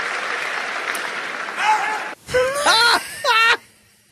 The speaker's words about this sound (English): Did you hear the America? What is that? What somebody said? Somebody was like, America. I'll play it again for you. They're cheering.